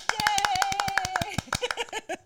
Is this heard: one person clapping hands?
yes